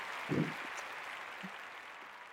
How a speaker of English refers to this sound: first off, I just want to start off with y'all a round of applause because we got these great guys, these amazing hosts that show up every single time, and I just want to say I appreciate y'all. If y'all deserve a round of applause, all right?